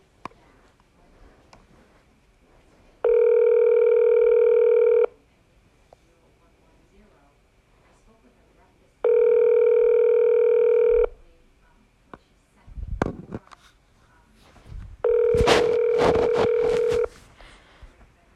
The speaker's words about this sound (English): Okay, this one is not picking up. I've been on the phone for a minute.